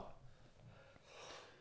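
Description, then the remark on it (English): A single quiet sneeze: a short breathy intake, then a hissy, noisy burst of air near the end. No talking. “Oh. Bless you, mate. Bless you.”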